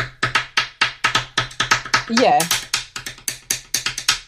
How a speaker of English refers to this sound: Okay, this isn't work because the pencils don't sound right. this is a disaster. This isn't working at all.